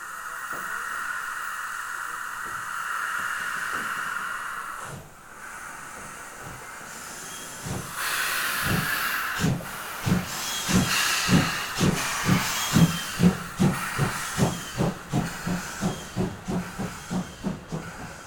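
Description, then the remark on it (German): A steam locomotive hisses steadily, then starts chuffing slowly and builds into a quickening rhythm of loud exhaust bursts as the train pulls away. No one speaks. “Der Lokführer füllt die Kohlen und das Wasser auf.”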